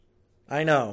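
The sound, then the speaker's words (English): A single drawn-out cat meow starts after a short stretch of quiet, swelling and then easing off as it ends. It is fairly loud, with no talking over it. “And I have a cat.”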